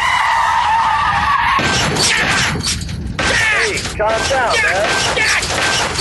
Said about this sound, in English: Ramming car in front of me. He won't get out of the way.